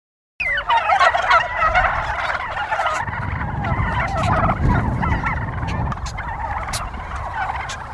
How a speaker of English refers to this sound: So here we are in a pen full of Kelly Bronze turkeys. These turkeys are wild in the woods, and what we're going to try and do is have a gobbling competition.